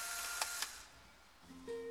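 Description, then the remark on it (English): An instant camera, pointed at people to take their picture, whirs and grinds loudly with two sharp clicks in the middle of the motor noise as it pushes out a print card, which then fades out, followed by a few thin, steady electronic tones near the end. “After he points it at us, the thing clicks and makes grinding noises.”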